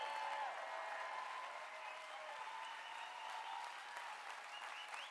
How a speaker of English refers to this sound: Come on, give the Lord a clap and a shout.